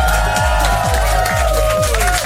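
A loud crowd at the Amsterdam Dance Event cheers and applauds over a steady, thumping electronic beat during a live marathon broadcast. The cheering and clapping form a continuous wash of noise for about two seconds.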